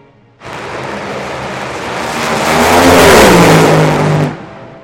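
A loud race car engine roars steadily during a test lap, climbing in pitch and intensity into a strong rev before cutting off abruptly, with no voices present.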